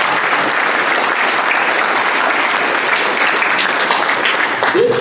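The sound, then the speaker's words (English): A large audience applauds itself, clapping steadily in a dense, continuous wash of applause, loud and even throughout without any break or talking over it. “So can you all please give yourselves another round of applause?”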